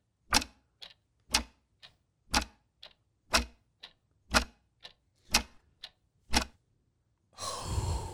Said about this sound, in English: I like leaving that clock going.